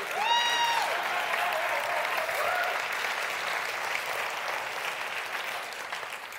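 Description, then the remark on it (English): An audience claps steadily for several seconds, a dense, even patter that tapers slightly toward the end, with a short whistled tone near the start and no one speaking. “Now that's not getting as much of a clap as I thought it would”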